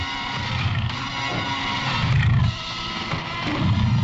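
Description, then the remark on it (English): A tiger roars loudly, its deep, rumbling growls rising in several heavy surges across a few seconds, with no voices present. “Tiger!”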